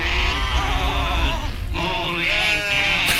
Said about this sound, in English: I should have known this was the case when I heard the sheep bleating like this.